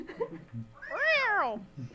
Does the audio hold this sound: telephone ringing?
no